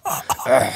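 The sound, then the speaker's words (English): A man coughs in a couple of short, harsh, throaty bursts that trail into a rough, voiced rasp, all within under a second. “As he coughs.”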